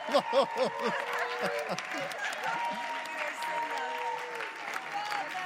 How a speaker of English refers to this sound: Come on, give these guys a hand. Stand up, church. Stand up. Stand up.